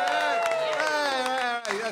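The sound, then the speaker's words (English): An audience bursts into a steady round of applause for an audio sound check to set recording levels: dense clapping mixed with loud whoops and sustained cheering voices, continuing throughout with a brief dip near the end. “So we get a good audio sound check, we do a big round of applause so we can hear set the levels.”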